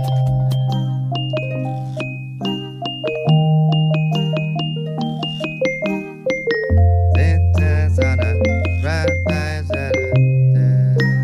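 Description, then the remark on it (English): A gentle lullaby version of a song played on xylophone, twinkling bells and childlike percussion, with bright struck notes ringing out in a steady, unhurried melody over a soft, sustained low tone. The music plays alone, with no voices. “It's just xylophones, twinkling bells, and childlike percussion.”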